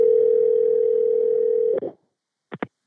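A steady, loud telephone dial tone of an outgoing follow-up call hums for nearly two seconds, then cuts off with a click, followed after a brief silence by two quick electronic beeps.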